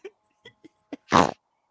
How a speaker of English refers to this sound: Are you farting out your mouth right now? What the fuck is going on? Is that the way hacks laugh?